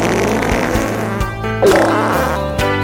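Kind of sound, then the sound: human body sound, fart sound effect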